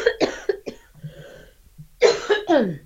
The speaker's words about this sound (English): Hold on, I'm going to cough. Hold on.